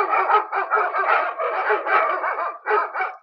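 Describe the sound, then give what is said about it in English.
A Ring doorbell motion-detector alert plays a recording of a dog barking rapidly and repeatedly for a few seconds, loud, with a brief pause near the end before a couple more barks. “That's my motion detector on my ring, so. I don't have a dog, so I just said it as a dog thing, you know.”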